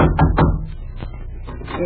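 Several firm knocks on the wooden door of Mrs. Plush's house, made while delivering a table to her, spaced unevenly over a couple of seconds and fairly loud against a low background hum.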